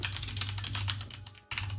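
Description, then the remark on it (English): Rapid typing of "Fantasy Grounds" on a computer keyboard, a dense run of light plastic clicks over a steady low hum, with a brief pause near the end before the tapping resumes. No one speaks. “To see if I spelled fantasy grounds right.”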